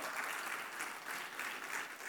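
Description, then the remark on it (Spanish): An audience in a church service gives a loud round of applause to God, many hands clapping steadily and overlapping into a dense, continuous wash of applause that holds at an even level for the whole stretch, with no voices standing out. “Diga amén, dele un fuerte aplauso a Dios, aún con usted.”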